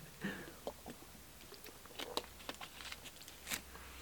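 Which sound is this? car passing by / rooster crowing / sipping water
sipping water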